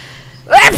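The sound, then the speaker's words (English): A single sharp sneeze bursts out after a brief quiet lead-in, loud and explosive with a breathy, hissing release. “Bless you.”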